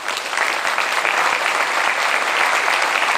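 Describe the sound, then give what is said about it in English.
A crowd, Trump among them, applauds steadily when Macron's 20-minute speech is done, dense overlapping clapping forming a continuous bright patter at even loudness throughout, with no voices rising above it. “Some surprise then that Trump, nationalism's champion, applauded when Macron was done.”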